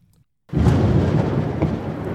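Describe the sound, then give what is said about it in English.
A deep, rolling rumble of thunder from an oncoming storm breaks in abruptly after a moment of silence and keeps grumbling loudly, with a wash of rain-like hiss beneath it. “That's not just the sound of an oncoming storm, but the end of the world.”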